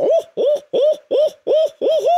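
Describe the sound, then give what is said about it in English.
A person imitates an owl with a mouth call, giving six evenly spaced, loud hoots, each a short rising-and-falling call with brief gaps between. “Give us your best mouth call, whether it's owl or crow.”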